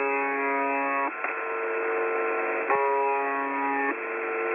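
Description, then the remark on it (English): The shortwave station UVB76, the buzzer, broadcasting between 4625 and 4810 kilohertz: its monotonous buzz tone drones steadily in long, loud, unchanging pulses, 25 tones per minute, separated by brief breaks and carried on a thin layer of static hiss. No one speaks. “is also known by its sort of semi-official name as UVB76, and that does broadcast on shortwave between 4625 and 4810 kilohertz, and it broadcasts this short monotonous buzz tone.”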